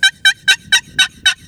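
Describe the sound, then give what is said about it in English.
A turkey box call runs a steady series of six raspy, high-pitched yelps, evenly spaced and loud, with no talking over them. “So if you just got one go-to call, a box call, because you can do anything on a box call. Just get a good box call. You can yelp.”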